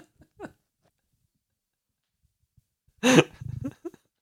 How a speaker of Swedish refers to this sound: Och nu gäspade jag igen. Jag är nog sjuk.